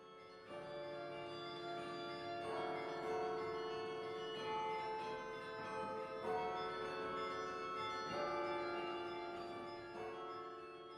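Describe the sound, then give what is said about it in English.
Carillon bells of a 49-bell carillon (bells from 15 pounds to 2.5 tons) in the tower at Michigan State University are played at noon in a weekly half-hour recital. They ring out in a melodic sequence, with fresh strikes every few seconds layering over long, shimmering resonant tones that sustain and overlap throughout; no one speaks. “began pounding away at the instrument's 49 bells, ranging from 15 pounds all the way to 2.5 tons, for his weekly half-hour recital.”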